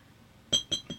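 Three quick glassy clinks ring out in a row, bright and high-pitched, as shot glasses are handled and filled, with a faint low murmur underneath and no speech.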